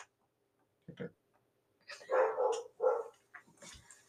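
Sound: dog barking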